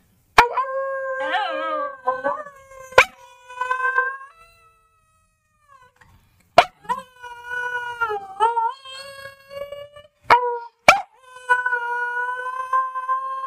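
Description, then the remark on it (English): A male dog howls and yowls in long, wavering, high-pitched bursts, fairly loud, with a few sharp clicks between the cries and a brief pause midway. “Oh God, are we making him howl again?”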